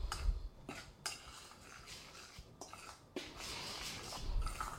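A utensil scrapes and clinks steadily around a bowl, making gritty, scratchy swishing sounds with a few sharper taps, as dry ingredients including half a teaspoon of sea salt are stirred together before being added to a pineapple batter.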